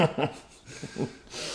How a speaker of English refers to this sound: Stop snoring over there. Sorry about that. Y'all can hear that. Got my cousin laying over there just snoring away, having good dreams and shit.